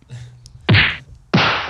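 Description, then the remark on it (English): Two loud smacking blows land on a face about half a second apart, a punch then a slap, each sharp hit ringing briefly before cutting off, with no voices. “Punch two. Then a slap.”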